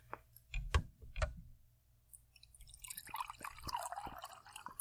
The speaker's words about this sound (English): I'm going to pour some water in a cup. Time for some ASMR.